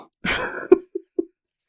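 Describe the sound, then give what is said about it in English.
A long, breathy nasal inhale from someone with allergies, followed by a few short, sharp sniffs spaced out over the next second, with no talking. “Sorry, I got allergies too. If you're wondering why I'm sniffing, doing the Trump sniff.”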